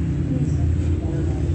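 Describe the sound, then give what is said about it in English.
The engine of a city bus, Route 87, bus 1264, rumbles at 8:08 a.m., a loud, steady low-pitched drone that holds without a break for the whole moment. “This is Route 87 that's here right now at 8:08 a.m. Bus 1264, they're monitoring.”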